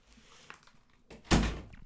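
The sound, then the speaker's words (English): A door swings shut with a solid thud after a brief shuffle of movement, one firm close that rings out and fades quickly. “So I'm just going to have to close this door now that I know she's home.”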